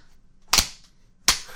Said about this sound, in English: I'm punching my fist into my other hand to show that I am threatening.